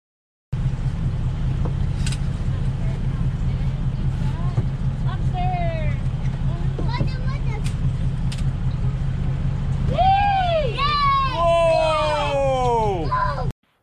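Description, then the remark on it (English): A fishing boat's engine drones steadily at sea as lobster traps are pulled off the back of the boat, with scattered high squeals early on and a burst of loud, swooping cries over the motor near the end. “This is coming right off the back of Justin's boat live. This could be you pulling instead of the person that's pulling.”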